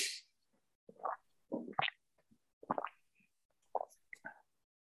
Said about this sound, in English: Sorry, I was just enjoying some water.